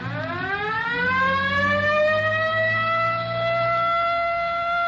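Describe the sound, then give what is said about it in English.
A car siren winds up from a low pitch and climbs into a loud, steady high wail, holding its tone over a low engine rumble, with no voices, as the car follows another car heading toward Rosecrans. “Better hit the siren.”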